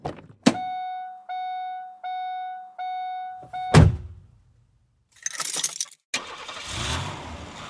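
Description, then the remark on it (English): A car door thumps, then a warning chime repeats in four steady pulses until a second door slam. A starter briefly cranks before the engine catches and settles into a steady rumble. “Now let's get in the car.”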